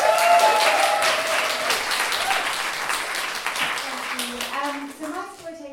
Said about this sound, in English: Round of applause